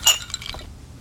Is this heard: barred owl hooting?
no